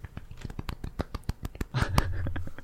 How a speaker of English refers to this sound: Polite clap.